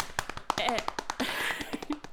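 sound effect, drumroll

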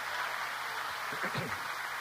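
crowd, weak audience applause

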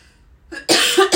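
human body sound, cough

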